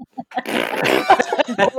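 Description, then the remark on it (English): A person blows a loud, buzzy raspberry with their lips, imitating a fart, lasting about a second, followed by a few short breathy vocal sounds. “my notes just say Xander's confessing he's in love with Willow. Fart noise.”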